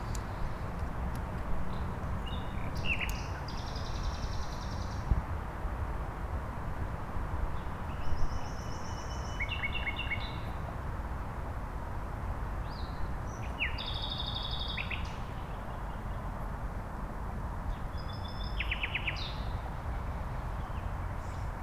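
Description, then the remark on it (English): At least four nightingales sing in short, varied bursts of whistles, trills and rapid chirps over a steady low rumble of background noise, northwest of Berlin, Germany, around midnight. “I think there's at least four that we can hear at the moment.”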